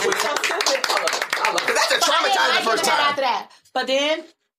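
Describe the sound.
Rapid hand clapping rings out for a few seconds, mixed with laughing, whooping voices, then breaks off as a single voice lets out a short cheer.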